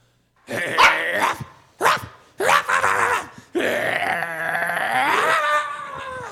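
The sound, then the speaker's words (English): A performer's voice imitates a lion: three short, loud growling roars in quick succession, then one long, drawn-out roar that wavers and trails off, all prominent. “That's not a hound dog, that's a lion.”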